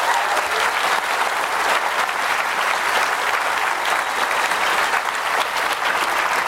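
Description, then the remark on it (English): A crowd applauds George at a signing event, a steady, dense wash of many hands clapping at a constant loud level for several seconds, with no voices breaking through. “Just give him one more round of applause, and then we'll get started.”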